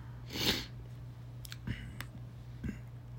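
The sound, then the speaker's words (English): One sharp, hissy nasal sniff from allergies, followed by a few faint short clicks and snuffles against a steady low hum, with no talking. “Apologize for sniffling. My allergies are quite bad this year.”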